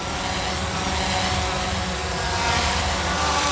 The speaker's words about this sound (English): Imagine a crowded city with hundreds of delivery drones buzzing by at all times. Now imagine how bad it would be near the fulfillment center, where the drones actually take off and land.